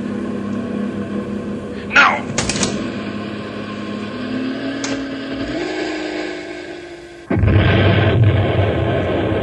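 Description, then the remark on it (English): The engine of a runaway heavy truck loaded with nitro drones and strains, with a few sharp clanks, then cuts off into a sudden loud, roaring explosion that rumbles on to the end. “Great Scott, I can't go into town with a runaway truck full of nitro.”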